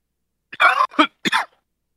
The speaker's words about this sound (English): coughing too